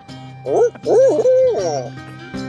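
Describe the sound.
A loud owl-style hooting call: a short hoot, then a longer rolling hoot that rises and falls, with a faint tail at the end. No talking.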